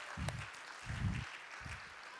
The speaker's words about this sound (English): Give him a big round of applause if you weren't there.